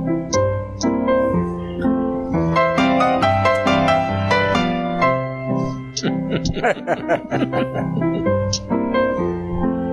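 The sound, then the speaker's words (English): A bouncy, ragtime-style theme tune from the movie The Sting plays loud for the whole stretch, with a steady rhythmic melody and a few wavering, warbling tones partway through. “This is from the movie The Sting, The Entertainer.”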